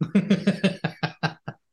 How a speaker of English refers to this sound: The reason I'm so obnoxiously clearing my throat is because I'm about to go the F off in my review.